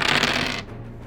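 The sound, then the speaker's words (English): Dice rattle and clatter across a table in a quick burst of dry, clicking knocks for about half a second, then settle into quiet, rolled to determine the Serpent Queen's hit points. No one speaks. “I also need to determine the Serpent Queen's hit points. Rolling 68.”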